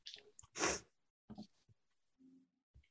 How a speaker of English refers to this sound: Already sneezing, but it's Oreo O's. Bless you. Thank you.